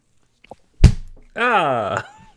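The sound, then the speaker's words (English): A single loud thunk as a microphone gets smacked against a computer during a slap motion, ringing briefly before a sustained vocal cry follows. “Yeah, I smacked my microphone off my computer.”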